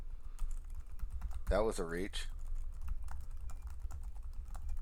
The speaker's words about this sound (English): What are you typing, everyone? Well, you'll see in just a second.